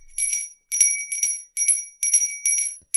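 Bright bells ring as a Christmas-time jingle, in quick, rhythmic bursts, about six shakes in a row with short gaps between, clear with no voices.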